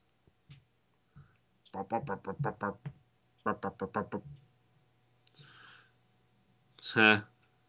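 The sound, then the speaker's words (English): A video game snowball throw effect: two quick runs of chirpy, warbling electronic blips, a soft brief whoosh, then one loud, bright buzzing burst to finish. No one talks over it. “Man, anytime I've thrown a snowball, it's never made that noise.”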